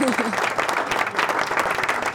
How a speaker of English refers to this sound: Where's the clapping sound? Yay!